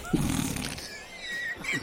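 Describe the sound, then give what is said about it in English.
A short, rumbling fart blurts out at the start, buzzy and low, then trails off into faint squeaky, whistling tones. “I'm glad you got fart.”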